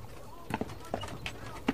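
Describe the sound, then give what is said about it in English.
A handful of irregular horse hoof clops, soft, with a slow uneven rhythm, over a quiet background that has a faint murmur of voices. “Here, horsey, come on.”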